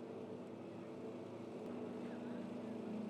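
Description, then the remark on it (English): A red race car driven by Spencer Cannon roars steadily as it crosses the start-finish line, its droning tone climbing slightly in pitch and growing a little louder as it approaches, with crowd and track noise blended underneath. “There's your leader across the start-finish line again.”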